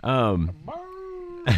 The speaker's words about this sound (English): He sounds like a hound dog. A second apiece. He's not a hound dog. Well, he's a mutt, so maybe there's some hound in there. Who fucking knows? He sounds like a hound dog to me.